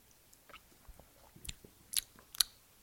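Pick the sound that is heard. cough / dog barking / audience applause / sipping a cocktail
sipping a cocktail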